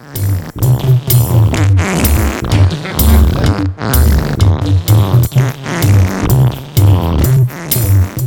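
A loud, continuous musical track built from rhythmic fart sounds, with repeated low blasts forming a beat and melody under sharp, crackling bursts, no one speaking.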